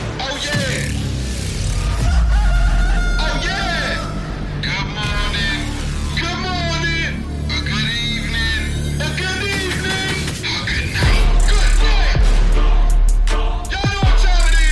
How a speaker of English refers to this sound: up next we have the theme for Rooster Robbins